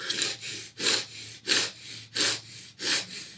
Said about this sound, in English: this breathing technique where it's just really fast. It's almost like you're causing your body to hyperventilate.